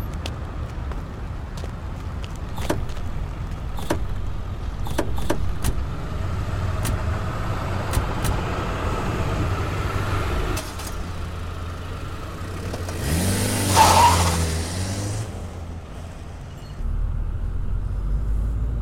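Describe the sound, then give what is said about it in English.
Several sharp thuds of car doors shutting as a group gets into the car over a low idling engine, then the engine revs up loudly and the car pulls away, its rumble continuing steadily afterward. “All right, everyone in the car, I will drive.”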